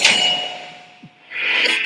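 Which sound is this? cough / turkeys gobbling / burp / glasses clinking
glasses clinking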